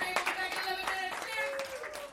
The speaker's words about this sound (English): So if you could, before we go on that break, give a round of applause to everybody that's come up and chatted with us.